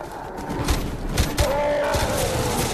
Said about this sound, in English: Oh, sorry, now, full-scale battle. Oh, dear. Yeah, like a handgun's going to do you any good.